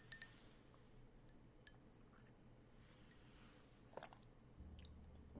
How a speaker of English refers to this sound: Oh, I think she's bringing her glass of water. Oh, I am so thirsty. Thank you so much for the water. Thank you. Oh, this is good. This is good.